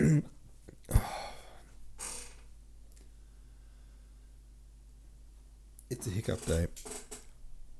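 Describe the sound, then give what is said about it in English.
A sudden, sharp hiccup jolts out near the start, followed by a soft breathy rush and a long quiet stretch before a brief burst of voice. “Now I'm reading while holding my breath because I feel like I've got the hiccups.”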